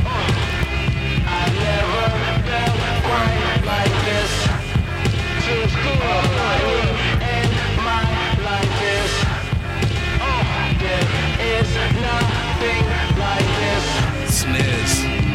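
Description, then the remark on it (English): A hip-hop beat with a heavy, distorted sub-bass rumbling continuously underneath, steady drums and a sung vocal line on top, loud and dense throughout. “Distortions, the sub, everything about … is in this song.”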